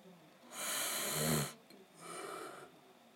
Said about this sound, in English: Whoa. Okay, there we go. I yawned. Finally. Didn't want to, but I did.